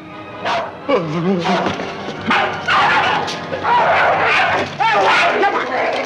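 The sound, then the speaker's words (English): A dog named Corky barks and snarls in loud bursts as it attacks a man, tangled with agitated voices as a scuffle seems to break out; the noise is dense and continuous with few pauses. “He warned me by barking.”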